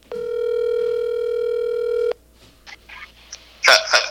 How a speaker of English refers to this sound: Now, I think we have to make a phone call.